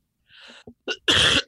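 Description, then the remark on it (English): A muffled, held-back cough: a breathy rasp, a short catch, then a stronger burst, all within about a second and a half, with no talking. “I'm trying to stifle a cough.”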